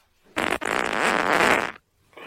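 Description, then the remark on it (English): A loud fart with a short burst, a brief pause, then a long sputtering, rippling stretch lasting over a second before cutting off, followed by a faint hiss. “Farts lead to great discussion.”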